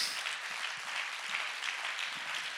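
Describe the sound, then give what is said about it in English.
An audience claps their hands unto the Lord before being seated, a dense, steady wash of many overlapping claps at moderate loudness with no voices standing out. “If you would clap your hands unto the Lord before you're seated.”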